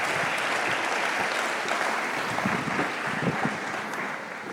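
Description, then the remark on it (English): An audience at the Eagle Church applauds to welcome a guest speaker with steady, dense clapping that holds at a fairly even loudness throughout, no voices standing out above it. “I'm going to ask you to come up, and let's just give him a warm welcome to the Eagle Church.”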